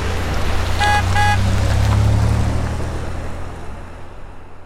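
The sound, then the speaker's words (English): A berry food truck's engine rumbles steadily as two short, bright horn toots sound in quick succession, then the engine noise slowly fades as it pulls away early in the morning, heading off to Freshwater. “So I baked them all up, and then early, early in the morning, Blueberry Grapes and I were off to Freshwater in my extraordinary berry food truck.”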